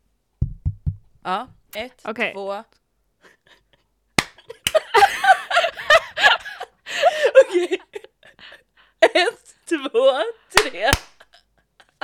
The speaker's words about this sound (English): Okay, are you ready for the clap?